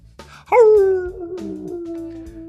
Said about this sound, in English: Oh no, a wolf.